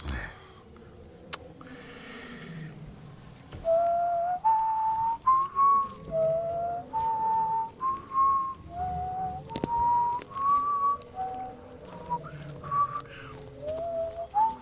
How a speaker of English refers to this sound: Would you like me to whistle, Your Majesty? Whistle? Cheer things up? All right.